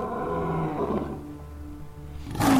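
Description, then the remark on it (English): Caged big cats chained down in a dark hold growl in fear and alarm, low, rumbling, throaty tones that rise and fall for a couple of seconds, ending in a sudden louder, harsher snarl. “Some of them growl in fear and alarm as I step among the narrow bunks.”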